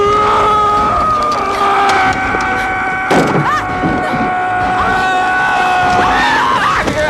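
A loud, sustained wild scream by Brad Dourif as Chucky in the Child's Play horror film, with wavering, gliding pitch that rises and falls over several seconds, dense and harsh, with a brief burst of noisy clatter in the middle.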